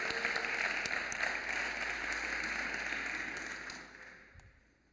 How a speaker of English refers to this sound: Thank you so much, Ronan. Can we get a round of applause for Ronan, please? That was beautiful. Well done.